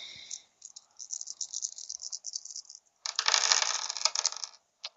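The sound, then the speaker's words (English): Six dice clatter and rattle in a hand for a few seconds as they are rolled for a firearms knowledge check, then spill out in a louder burst of bright clicking that settles, with one last small tick at the end. “I'm going to roll it anyway.”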